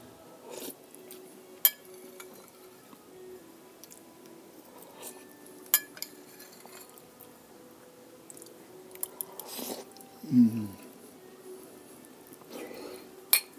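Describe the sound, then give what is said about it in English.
A spoon clinks sharply against a bowl every few seconds as someone tastes hot cooked cauliflower, with soft, wet chewing in between and a brief low vocal murmur partway through. “Nearly did burn myself with that piece of cauliflower. Taste is very good.”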